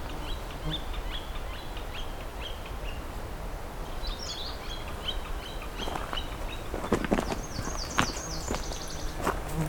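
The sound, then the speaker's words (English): A northern flicker calls in quick, repeated high notes over steady outdoor background noise with a few sharp knocking or stepping sounds, and other faint birds chirping. “It's got another flicker here.”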